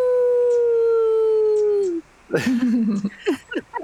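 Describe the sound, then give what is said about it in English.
A person imitates a wolf howl: one long, steady, slightly falling note for about two seconds, then a burst of short, broken yips and yelps, loud. “And I close my eyes and try to, like, reconnect with that part of myself to make, like, a wolf howl for him.”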